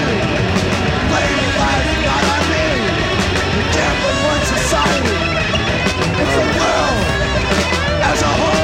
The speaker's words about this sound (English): It's so dry, there's not a speck of reverb on this recording. I like the guitars though, they sound good. Yeah. That chunk. You don't get that chunk everywhere. Well, you know, this is one of the longer blast beat songs I've heard